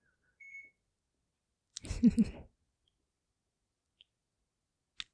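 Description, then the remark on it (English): A short, high electronic beep sounds once, signalling a package delivery, followed a moment later by a brief muffled thud and rustle, then a couple of faint clicks in otherwise quiet surroundings. “I don't know if you could hear that little beep, but there was just a package delivered.”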